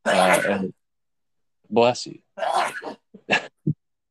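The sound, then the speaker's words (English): A few sharp sneezes burst out in quick succession, each a short explosive blast with a voiced catch, separated by brief pauses. “Bless you.”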